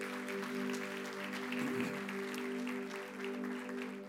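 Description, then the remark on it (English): An audience at Abundant Life claps steadily, a dense crackle of many hands at moderate loudness lasting throughout, over a low sustained hum. “come on, would you give them a great big hand clap?”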